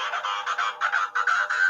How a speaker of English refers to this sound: Sorry, it's my phone going.